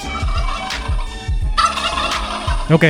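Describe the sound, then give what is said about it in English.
Turkeys gobble in rapid, warbling bursts, several overlapping calls repeating over a low rumbling background, ending in a loud, quavering gobble. “Hey, y'all, that was Mr. and Mrs. Turkey.”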